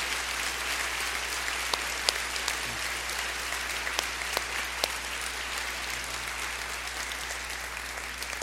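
Sustained applause from a City Hope church audience for their pastor, a dense wash of many hands clapping steadily throughout, with occasional sharper individual claps standing out. No one speaks over it.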